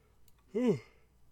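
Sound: yawn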